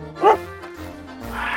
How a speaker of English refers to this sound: We got a dog that only speaks French.